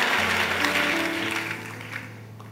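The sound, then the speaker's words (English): An audience claps their hands together at a preacher's call, a dense, continuous patter joined by a low sustained hum of tones underneath, the clapping steady at first and gradually easing off. “Clap your hands and say, I'm coming out of this nonsense.”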